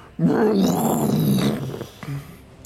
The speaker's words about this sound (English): as you stare down the beast, it turns its head toward you. And you see it just kind of prep its feet onto the ground. It lets out a vicious roar.